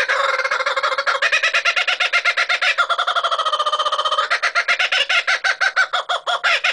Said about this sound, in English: Like chickadee, the name kookaburra is onomatopoeic. It's derived from the world-famous cackle made by these birds.